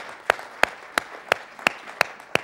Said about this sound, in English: In the name of Jesus, let's clap to the Lord today. Thank you, Lord. Hallelujah.